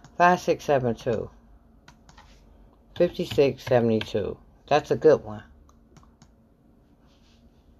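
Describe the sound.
Soft, scattered computer keyboard clicks and typing, fairly faint, mostly in the pauses between bursts of a man speaking while working on the computer, with the tapping continuing quietly near the end.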